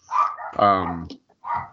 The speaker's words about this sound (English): The dog's not going to stop barking.